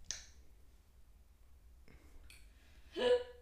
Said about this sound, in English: Hiccups.